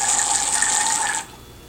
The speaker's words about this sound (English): And to do this, you just kind of set it over the glass here. And you'll hear this neat sound of the air getting into the wine. So here we go, 3, 2, 1. Yeah, you hear all that sound and you see all the bubbles? Check that out.